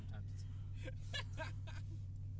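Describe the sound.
A steady, low road-and-engine rumble fills the cabin of a moving car carrying five people, with brief bursts of indistinct voices rising over the constant drone.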